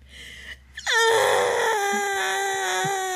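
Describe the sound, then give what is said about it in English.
A voice imitates a baby girl screaming at the top of her lungs: one loud, sustained wail that swoops down in pitch at the start, then holds a strained, wavering cry until the end, preceded by a short gasp. “She would be screaming at the top of her lungs like I choked her.”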